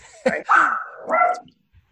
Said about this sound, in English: There's a dog outside who's barking.